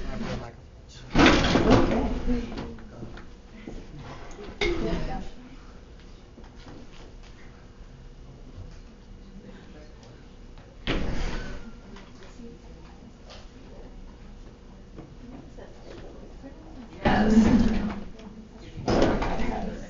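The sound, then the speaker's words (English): Drawers in an auditorium slide open and bang shut while being searched for a microphone, in several separate bursts spread irregularly over the stretch, loud, with quiet background murmur and faint talk between them. “It should be in one of the drawers.”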